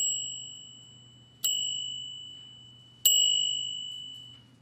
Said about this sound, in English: And finally, our minds have been settled enough to listen to the Dharma. And that's the final three strikes of the bell.